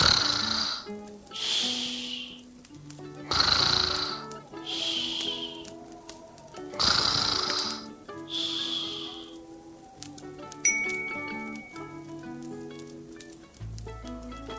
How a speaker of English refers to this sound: But the bear snores on.